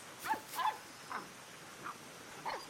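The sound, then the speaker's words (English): A mother dog gives about five short, bright woofs spaced irregularly over a few seconds, fairly soft, with no voices, as she chases her puppy in a barn. “He runs off and hides again, as his mama dog woofs happily and chases him.”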